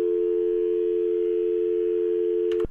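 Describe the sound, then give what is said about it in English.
A telephone line tone on an outgoing call to a number left in a message claiming to be from Revenue Canada, a single steady low hum holding unbroken for a few seconds before cutting off abruptly with a faint click. No voices. “And let's give it a call. Let's see what happens.”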